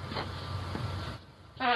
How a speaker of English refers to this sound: Dude, the two farts are awesome. How he waited the second fart out, and then he waves